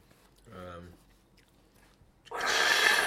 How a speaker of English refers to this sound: Yeah. I was like, gonna like eat me eating the chips sounds crunchy, so I was like, gonna do that.